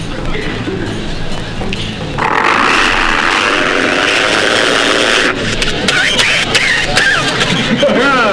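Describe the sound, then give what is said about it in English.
A voice imitates a motorcycle engine with a continuous buzzing, rasping drone that swells louder after a couple of seconds and holds steady, fairly loud, with no other talking. “Imitate Marty Frickert riding a motorcycle”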